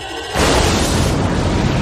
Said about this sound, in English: But this moment where you see the Enterprise and the Excelsior take turns firing their torpedoes onto the bird of prey, and then it just explodes. Mm-hmm. It's great. It's very satisfying,